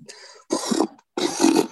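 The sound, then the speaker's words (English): A person voices a horse snort, three breathy, noisy bursts: a short, softer one followed by two louder, rough blasts separated by brief silences. “So snort, right? Mm-hmm. The horse.”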